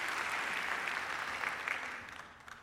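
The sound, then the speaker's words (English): A church audience applauds steadily to welcome back two returning members, a dense wash of many hands clapping at once that holds for a couple of seconds before gradually thinning and fading out. “Would you give them a round of applause for their return to us?”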